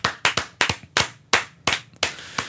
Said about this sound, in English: We've all been waiting for this moment. Whole set starts clapping. Yeah. Like slowly, just, oh.